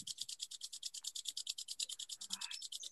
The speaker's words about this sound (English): And now just start again by rubbing your hands together. Make them feel warm.